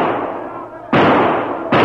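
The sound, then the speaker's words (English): Gunshots fired high over the heads of a crowd pushing at a door crack out in quick succession, two sharp, loud blasts punching through a dense, continuous roar of noise, each one hitting suddenly and ringing on. “Come on, keep firing. Fire high.”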